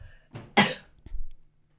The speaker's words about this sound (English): Hold on. I have to sneeze.